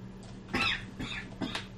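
A person coughs three times in quick succession, short raspy bursts about half a second apart, fairly quiet and a little distant over a steady low hum, with no talking.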